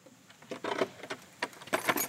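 A massive brass skeleton-style key, about 6 or 7 inches long, rattles and scrapes in an old lock as the back door of the Keith house at Graeme Park is opened, with bright metallic jingling clicks in short bursts, then a firmer clunk as the bolt turns. No one speaks.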